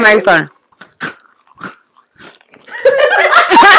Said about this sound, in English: Oh, that cookie is good. These are eating cookies. This bitch is chewing a cookie into the microphone.